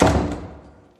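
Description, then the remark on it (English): A single heavy thud as a door is pushed open, loud, with a short resonant decay fading over about a second. “push the door at the same time.”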